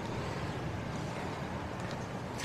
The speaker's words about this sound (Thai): จะเห็นว่ายืนอยู่ใกล้เนี่ยจะได้กลิ่นกากหมูเลยนะลมแรงนะคะเนี่ย